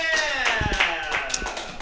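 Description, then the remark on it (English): An audience breaks into brief applause to show who has heard of or experienced ghosting, scattered claps rattling along steadily while a few voices whoop and shout over them, fairly loud throughout. “By round of applause, ghosting.”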